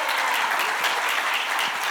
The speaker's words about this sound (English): So as a parent who had children in both of these retreats, would you give them a very big round of applause?